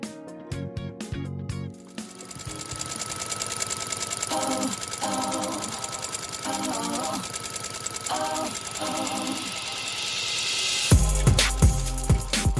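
A sewing machine runs steadily at an even pace, its mechanical whir continuing for several seconds before a louder, thumping burst of sound takes over near the end.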